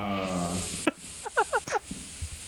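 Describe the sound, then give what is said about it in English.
A video game bug creature hisses over a steady airy noise, with a low droning tone, a sharp snap, then a quick run of four or five short, falling chittering chirps. “Oh, I can hear another one. Do you hear the bugs?”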